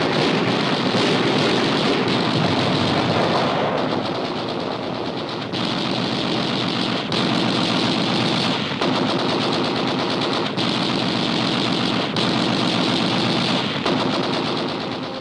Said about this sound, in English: Depth charges are dropped in a deadly pattern. The Nazi is forced to the surface. Immediately, a torrent of gunfire is turned on the crippled sub. It is doomed.